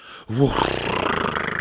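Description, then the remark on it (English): A woman gasps once, sharply, after a brief silence. The voiced catch of breath trails into a breathy, rushing sound that lasts about a second. “Tonight, Belinda gasped.”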